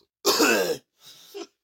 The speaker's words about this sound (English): Oh my god, I'm gonna cough.